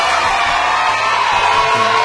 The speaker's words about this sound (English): So I think you deserve a round of applause. Yeah. And some cheering as well. Especially by the kids.